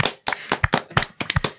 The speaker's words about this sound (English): Number one, we should all clap. That was great.